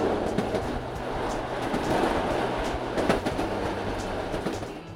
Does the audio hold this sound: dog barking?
no